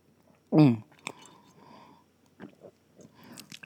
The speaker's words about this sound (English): I'm going to take a sip of my wine because that was heavy, child.